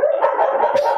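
dog barking

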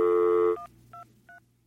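telephone dialing tones

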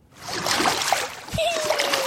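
water splashing

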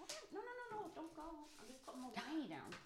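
cat meowing

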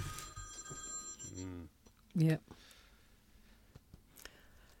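phone ringing

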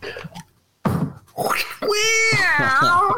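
cat meowing sound effect

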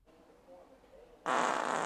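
wet fart

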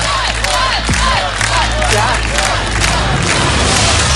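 studio audience cheering

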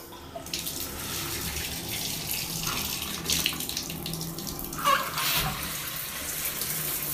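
shower water running

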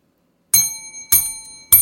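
bell ding sound effect

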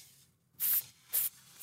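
steak sizzling

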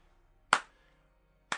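hand clapping

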